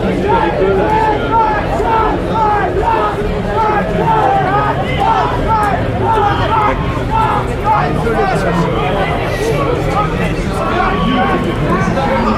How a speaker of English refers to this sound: Fanatics shouting at the drivers.